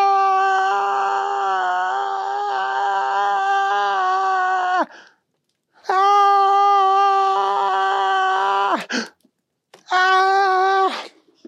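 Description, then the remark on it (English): A loud, drawn-out, strained human yell holds steady for several seconds, breaks off, then returns in two more sustained bursts, the last one shorter. “Just then, they heard the most terrifying yell.”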